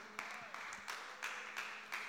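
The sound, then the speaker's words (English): Faint, scattered clapping from about half of a sermon audience in a room: a few sharp claps spaced roughly evenly apart, over a steady background hiss with no voices. “See, like half of the people clap in this room because they're like, what?”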